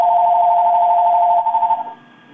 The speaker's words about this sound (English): Do you answer that phone? That's real annoying.